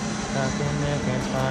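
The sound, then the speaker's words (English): An airplane passes overhead on its way in to land at Palomar Airport in Carlsbad, California, a steady, loud engine roar with a low droning hum running beneath it throughout. “Oh, there's an airplane going over my head because I'm right by the Palomar Airport in Carlsbad, California.”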